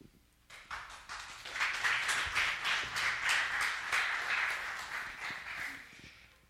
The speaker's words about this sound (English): It's always kind of weirded me out how we clap for people before they do anything, because we don't actually know if they're going to say or do something good yet.